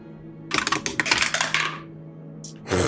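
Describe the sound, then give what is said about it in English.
A rapid flurry of small hard clicks and clatters as dice are rolled across a tray for a perception check in a game, lasting about a second before settling, followed by a couple of brief knocks. Fairly loud, with no talking. “I have all these dice that are being shamed around my tray”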